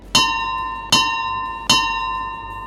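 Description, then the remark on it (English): The three bells of the ship Ironwood ring at a steady, unhurried pace as passengers come on board, each bright metallic strike ringing out and lingering as it fades before the next. No voices are heard. “As you guys get on board, the three bells chime.”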